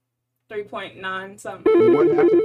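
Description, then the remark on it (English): A voice speaks briefly, then a loud telephone ring cuts in abruptly: a rapid, warbling electronic trill alternating between two pitches, sustained to the end, signaling a caller phoning in to the Intellectual Stew show. “So we got somebody calling in.”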